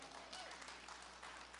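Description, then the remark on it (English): An audience at Life Church cheers and applauds on the first Sunday of its new lead pastors, in a steady, dense wash of clapping mixed with crowd voices. It holds at an even, fairly soft level throughout with no separate speech. “And in case you're wondering why people are cheering, this is our first Sunday as lead pastors at the church.”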